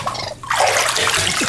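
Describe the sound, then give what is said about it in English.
Water splashes and sloshes in a bathtub as a pet raccoon is put in the bath, a steady rushing wash that dips briefly, then swells louder and keeps churning. No voices are heard. “hold on a second while I put Tangy in the bath”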